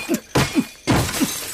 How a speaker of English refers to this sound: A plutonian mind quartz. The entire security system must be coordinated by this beautiful, delicate, sentient crystal. Good, because it's hammer time.